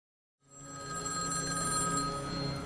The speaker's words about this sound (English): I have to answer that phone.